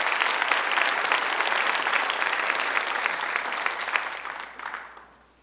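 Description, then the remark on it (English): An audience applauds steadily to welcome a guest speaker. A dense wash of many hands clapping at an even level lasts several seconds before tapering off and fading out at the end. No one speaks over it. “Give him a hand.”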